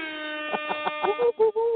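A loud air horn sound effect blares in a sustained tone, punctuated by quick rhythmic bursts that build into a few longer, louder blasts, with no one talking; played as a belated celebration for getting a Wayne Gretzky autograph card from Ultimate Collection.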